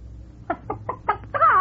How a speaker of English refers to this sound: What's that chicken doing here?